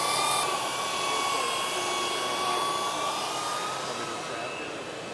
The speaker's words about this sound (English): Here you see Kevin grinding a weld using one of our power tools.